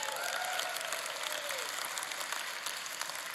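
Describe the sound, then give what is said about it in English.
Steady, dense applause from an audience fills the whole stretch, a broad crackle of many hands clapping at once, fairly loud and sustained without pause. “Don't applaud before.”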